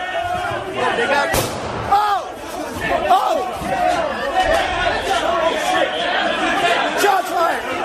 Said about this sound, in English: But as that plainclothes officer shoots, there is a civil disturbance unit of officers armed directly behind him.